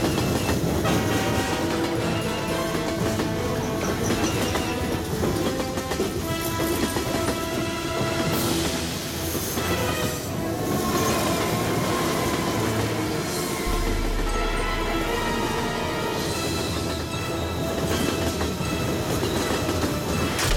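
A train sound effect from a sound effects library CD: a train rumbles steadily past, with a continuous rolling clatter of wheels on track and a blaring horn rising over the roar, loud and sustained throughout.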